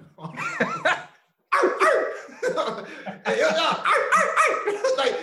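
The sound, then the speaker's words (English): A person imitates a dog, letting out loud, gruff barks in quick bursts, pausing briefly after the first volley before launching into a longer, rapid run of growly barking. “And in the midst of all of that, you were barking.”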